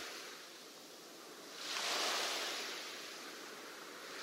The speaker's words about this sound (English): The soundscape is waves.